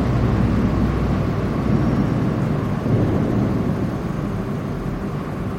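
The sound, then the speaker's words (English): A boat passing on the river in London, heard as a steady, deep engine rumble with a broad wash of noise that holds at an even loudness throughout, with no voices. “There's a boat.”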